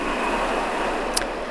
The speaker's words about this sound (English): The fishermen are getting ready to go out to the sea on their tiny boats. They kiss their wives and kids goodbye and leave their poorly lit, poorly heated huts, disappearing into the night, into the storm, into the raging waves.